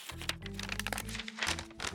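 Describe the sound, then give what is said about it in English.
Crisp crinkling and rustling of a folded paper note being handled and unfolded, a steady run of small crackles over two seconds with no talking. “Wow, he really folded this thing up a lot of times.”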